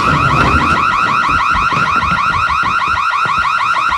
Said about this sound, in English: So while they're talking, the fire alarm goes off because her kitchen's on fire because she let that lamb get burnt. She sure did. And Sarah takes it out of the oven and Maddie turns off the alarm. This alarm is like legit serious.